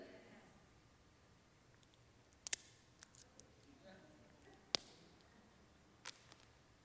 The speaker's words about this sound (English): Now, what are you thinking about right now? What a jerk! He just broke that poor woman's pencil.